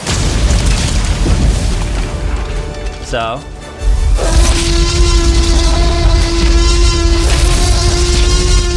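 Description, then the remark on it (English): A loud, booming T-Rex roar movie sound effect, the final roar from the movie: harsh and rumbling, with a brief warbling squeal, a short dip, then a long sustained growling roar. A voice speaks briefly at the start. “And I actually found some more T-Rex roars.”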